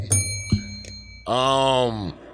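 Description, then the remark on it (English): A bell is struck two or three times in quick succession, its bright, high ringing tone sustaining underneath as a voice follows with a drawn-out vocal sound. “Hit the bell again.”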